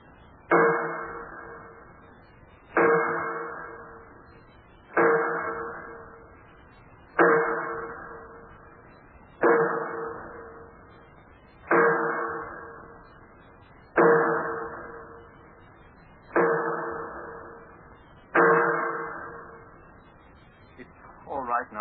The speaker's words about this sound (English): The bolts and wing bolts that hold the door shut, they have to be tightened by hammering with a sledge.